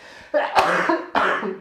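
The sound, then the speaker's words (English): Two harsh, loud coughs, each a broad noisy burst lasting about half a second, separated by a brief pause. “Stop with the coughing already.”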